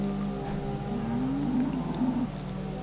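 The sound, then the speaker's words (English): A cow being beaten on a farm moos in a long, low drawn-out call that rises and wavers, loud, with a steady background hum and no talking. “She's beating up a cow.”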